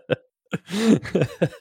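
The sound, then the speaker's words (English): A burst of harsh coughing right into a microphone by someone who had not muted themselves: short sharp hacks, then a longer raspy wheezing cough, followed by two more quick coughs, loud with no talking. “He's still coughing.”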